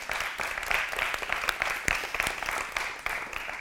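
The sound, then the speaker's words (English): A crowd applauds steadily for those who taught during the summer. Dense, overlapping claps form a bright, hissy wash at an even, moderate level throughout. No voices are heard. “And like round of applause worthy.”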